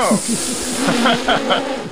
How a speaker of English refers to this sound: What was that? Was that a drop? Was that like a race car sound effect? Yeah, that was our race car sound effect.